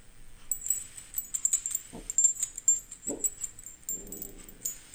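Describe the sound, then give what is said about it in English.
Dog collars jangle with bright, metallic clinks as they're shaken rhythmically throughout, fairly loud, while a dog lets out a couple of short barks or yelps in between. “What's in this? Dog collars. He loves to bark at this.”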